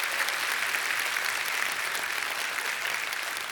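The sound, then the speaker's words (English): A church audience at an Easter service applauds the worship arts teams steadily, a dense wash of many hands clapping at once, sustained and even in volume across the whole stretch with no voices breaking through. “Don't you want to give our worship arts teams a warm round of applause?”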